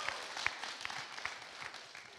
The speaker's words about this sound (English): a round of applause as we kick off. Go for it.